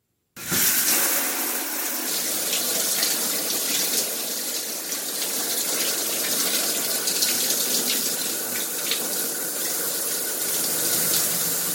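Steady rush of running water, like a shower, starting abruptly and continuing at an even, fairly loud level throughout with a hissing spray and no voices.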